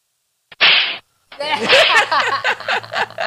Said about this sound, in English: There's a slap.